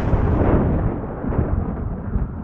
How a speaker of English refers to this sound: The storm is nearly here.